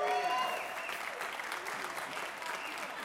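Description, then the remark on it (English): A crowd at a jazz concert claps and cheers steadily, the dense patter of many hands mixed with a few whistles and shouts, loudest at the start and holding on for the full three seconds. “Invite your friends, invite your family, because we want a huge crowd here making that kind of noise.”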